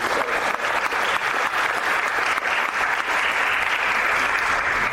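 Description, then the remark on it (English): Steady, sustained applause from an audience for a panel of speakers, a dense wash of many hands clapping at an even loudness throughout, with no voices standing out. “So please give a round of applause to our panel.”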